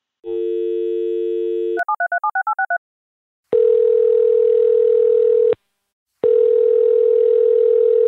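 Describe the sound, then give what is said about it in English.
A steady telephone dial tone, then a rapid burst of keypad dialing beeps as a call is placed to a guest, followed by two long ringing tones separated by a pause, loud and clear with no voices. “So next up is getting you on the phone with Marsha.”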